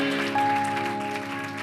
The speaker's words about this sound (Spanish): Un aplauso más fuerte a la gloria de Cristo. Un aplauso más fuerte a la gloria de Cristo. Un aplauso más fuerte a la gloria de Cristo.